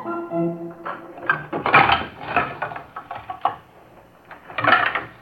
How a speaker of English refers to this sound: Horrors, what's making all that racket, Dippy Dwarf? Oh, good morning, Barbecue Pig. The noise? Oh, they're just moving the piano up to the frog's room.